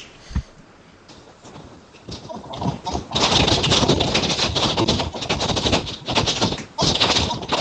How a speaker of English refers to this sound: Somebody is typing anger. Sounds like she's really mad.